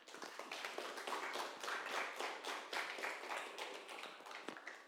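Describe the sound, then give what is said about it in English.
An audience applauds steadily for several seconds, many hands clapping at once in a dense, continuous patter, fairly even in loudness with no voices over it. “I think, can we do another clap”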